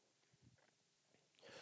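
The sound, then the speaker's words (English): A single short, breathy, natural cough bursts out near the end after a few soft throat and breath noises, fairly loud against an otherwise quiet background. “It was a natural cough, if it helps.”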